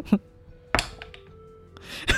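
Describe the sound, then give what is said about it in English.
Dice are rolled onto a table for an attack and land on a natural 1: a few sharp, hard knocks spread over two seconds, with a faint ringing tone lingering between the impacts. “I rolled a nat 1.”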